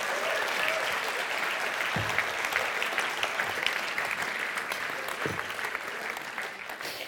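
Sustained, rapturous applause from a live audience, a dense wash of many hands clapping at steady loudness throughout, with a couple of brief low thumps partway through.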